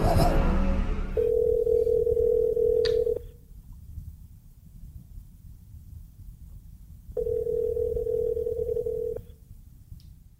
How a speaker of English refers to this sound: But since Lorraine can't fix anything in her house, she makes a phone call to her friend